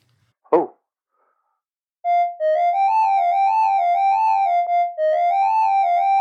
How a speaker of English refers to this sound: So what was that then? A recorder. A recorder?